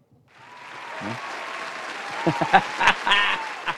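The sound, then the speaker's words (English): A burst of applause for a baseball umpire swells in after a brief quiet start and holds steady, many hands clapping with a few sharper, louder claps standing out toward the end. “We don't often applaud umpires around here, so it was due.”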